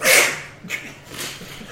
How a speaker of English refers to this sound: I've got a sneeze. Oh, don't do it. Don't do it. Not in this direction.